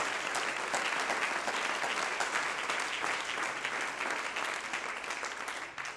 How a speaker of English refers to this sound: Oh, clap your hands unto the Lord, all you people.